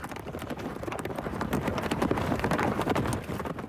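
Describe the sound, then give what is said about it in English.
Puppet horse hooves, worked by puppeteers in a theater play, canter across a stage floor in a rapid, steady clatter of hard knocks, fairly loud, with no voices over them. “Cantering and galloping on the stage was very difficult. And so what we do in this theater is we put other people manipulating the hooves.”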